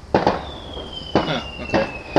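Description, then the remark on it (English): Fireworks going off: a quick double bang, then three more sharp pops spaced irregularly, with a thin high whistle streaking across between them. “Man, the fireworks are going off crazy.”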